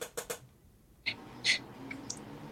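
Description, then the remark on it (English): A dog gives a squeaky, whining yawn, with a couple of breathy huffs before it and a faint high squeak trailing after, amid otherwise quiet surroundings. “And we got the dog yawning.”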